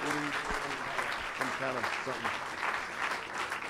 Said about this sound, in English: Clap our hands one more time.